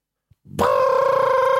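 alarm clock ringing

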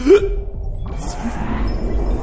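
hiccup

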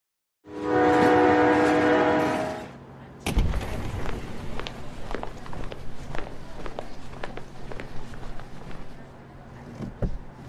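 train

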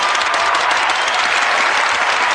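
audience applause and cheering

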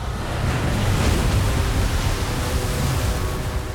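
ocean waves

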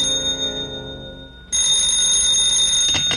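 telephone bell ringing

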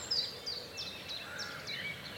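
birdsong

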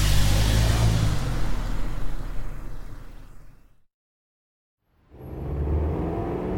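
taxi cab pulling up

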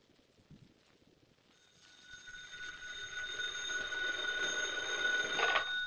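telephone ringing

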